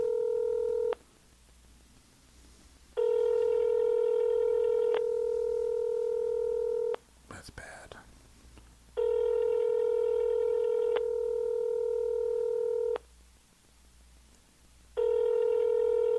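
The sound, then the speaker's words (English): A phone line ringback tone from a call to a spoof number repeats in long, steady buzzing bursts separated by silent gaps, with a short rustling click partway through. Nobody speaks. “It's a long ring.”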